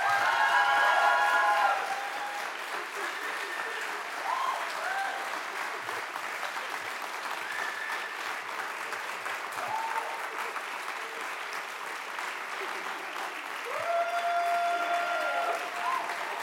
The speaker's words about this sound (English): She's worked her socks off for that. Could you give her a round of applause?